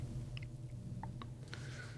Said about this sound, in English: Take the gum out. Oh, sorry, guys. Yeah, it's like prison here. You're not allowed to chew gum. It annoys the listener. My bad.